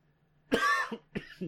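A harsh cough bursts out, followed by a couple of shorter rasping coughs in quick succession, with no talking.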